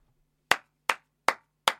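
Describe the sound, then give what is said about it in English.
Four sharp hand claps in a steady, evenly spaced rhythm, each crisp with a quick decay, over a faint low hum and no talking. “Not clap like you just figured out fucking maths.”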